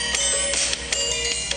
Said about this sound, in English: Like I said, I miss when they called him Big Red and had some baby, like, not baby, belly dance music. I'm going to fucking play it on my phone right now. Nice. This was his music.